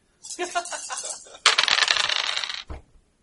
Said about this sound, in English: Okay. Roll on that one. Four dice. Roll higher than 10.